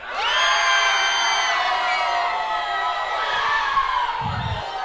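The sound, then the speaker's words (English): A large, standing audience screams together in triumph, a loud, sustained roar of many overlapping voices that holds for several seconds, full of high shouts and whoops. “Because when you guys screamed in triumph, it sounded to me like you were a strong force, that you'd won the battle, and that you guys were not to be”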